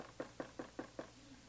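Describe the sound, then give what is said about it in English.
Five quick, evenly spaced knocks on a door, each a firm hollow rap, coming in a steady rhythm and then stopping, with no voices around them. “And somebody come knock on the door.”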